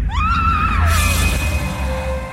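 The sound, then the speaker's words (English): A woman lets out a short, shrill scream that rises sharply and then fades as she is struck by an attacker in the dark while walking at night. It is cut through by a sudden noisy burst, all over a heavy, constant low rumble. “It strikes her in the gloom so fast she barely has time to scream.”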